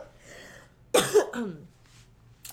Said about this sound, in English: Don't make me laugh. It makes me cough.